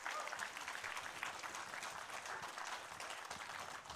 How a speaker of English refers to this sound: Amen. Amen. Let's applaud the Lord and the mommies again.